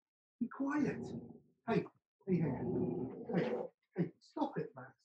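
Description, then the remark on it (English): A guard dog growls and whimpers in several uneven bursts, with short pauses between the strained, whiny vocal sounds. “Hey, stop it, Max. Just stop. Guard dog.”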